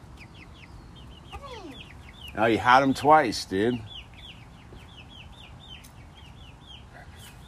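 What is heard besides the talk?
chickens clucking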